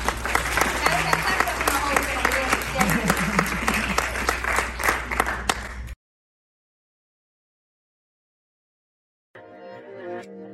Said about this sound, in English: And y'all can clap it up for my mother. She's still thriving today.